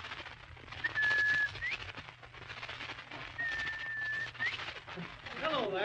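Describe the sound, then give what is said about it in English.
A person whistles an imitation of a bobwhite quail call twice, each a steady held note ending in a quick upward slide, heard over a constant low hum and background noise. “Did you ever hear me imitate a Bob White?”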